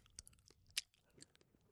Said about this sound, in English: Wait. Dude, are you chewing gum? Yeah.